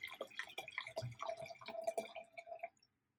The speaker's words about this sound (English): I'm going to pour myself another glass of wine.